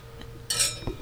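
Glasses clink together in a toast, one bright ring that shimmers for a moment before fading, with a couple of softer knocks around it and no talking.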